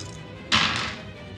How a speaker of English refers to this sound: All right, come on, dice. Let's do just a little bit better this time, guys.